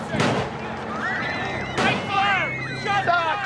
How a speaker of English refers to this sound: And of course, now the shooting itself is triggered, you could say, somewhat accidentally because the criminal hears a truck backfire in the street.